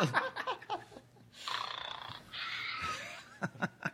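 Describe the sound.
A voice imitates phlegmy snoring: two long, rattling, gurgly snores in a row, fairly loud, with brief chuckling vocal sounds before and after.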